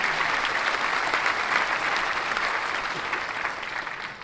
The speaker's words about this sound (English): Have some applause.